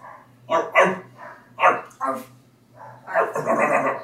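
A dog barks several times in quick, uneven bursts, fairly loud, ending in a longer run of rough, overlapping barks over a faint steady hum.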